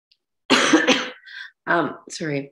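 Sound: cough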